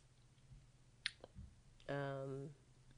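A close, quiet swallow of coffee: a wet click and a soft low gulp, followed by a brief hummed vocal sound against a faint background hum.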